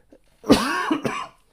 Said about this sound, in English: Dang, cough. Rams give up. I'm fighting it. I'm fighting the cough.